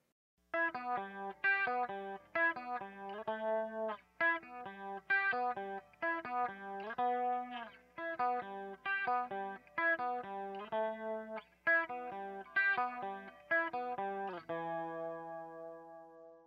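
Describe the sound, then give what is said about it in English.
Clean electric guitar played through an MXR Analog Chorus pedal, an amplifier and an EQ pedal, with no distortion, picks out a steady, repeating riff of bright single notes with a shimmering chorus, then ends on one chord left ringing out. No one speaks. “In this demo, we're going to be using the MXR Analog Chorus, so let's give a listen to how that sounds”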